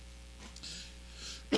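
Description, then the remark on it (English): A single short, sharp, fairly loud cough bursts out near the end, after a stretch of quiet background hiss. “Oh, and as always, we got to have this cough.”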